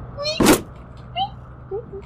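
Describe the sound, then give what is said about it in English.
A short, high squeak leads into a sharp, loud ripping crack as a board is ripped off, a foley effect, followed by a few faint chirpy creaks trailing off. “It makes a little bit of a squeaky noise as you just rip the board off.”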